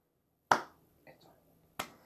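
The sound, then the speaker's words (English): Two sharp, deliberate hand claps spaced more than a second apart, a slow sarcastic clap after a missed hand-axe throw in a tabletop role-playing game, with a brief faint vocal sound between them and quiet otherwise. “Jaeger slow claps.”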